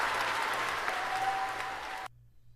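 A dense burst of applause from a group, steady crackling claps for about two seconds that stop abruptly, leaving a low hum behind.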